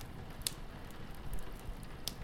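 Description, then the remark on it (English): A quiet, crackling fire with a steady low hiss and rumble, broken by two sharp pops about one and a half seconds apart. No one speaks. “The warmth from the fire makes you feel sleepy.”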